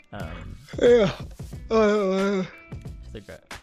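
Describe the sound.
A big, drawn-out yawn from one person: a short voiced stretch, then a long sustained groaning exhale, followed by a few faint breathy sounds. It is fairly loud.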